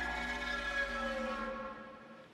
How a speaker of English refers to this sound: The foghorn blew. The monster roared again. The foghorn blew.